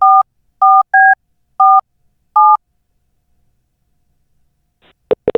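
Five short dual-tone keypad beeps as a phone number for the Glenn Beck program is dialed, evenly spaced over a couple of seconds, followed by silence and then a brief burst of clicking line noise.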